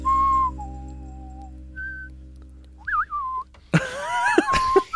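Two people whistle close by, trading short steady notes and then wavering, sliding tones, with breathy bursts and a bit of laughter breaking in near the end.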